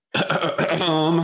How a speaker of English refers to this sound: I've been clearing my throat a lot, but that one was intentional.